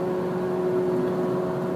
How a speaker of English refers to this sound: I apologize, there's a motorcycle that has decided to keep pace with me and is very loud.